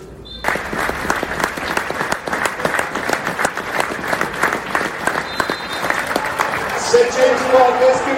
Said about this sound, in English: St James's Park will now mark Jevon, Harvey, Wilf and Hugo with a minute's applause.